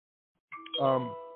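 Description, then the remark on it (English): A phone's text message chime sounds once: a brief opening tone, then a richer, ringing electronic tone that lingers and slowly fades, with no talking. “Like, who is texting me in the middle of the program?”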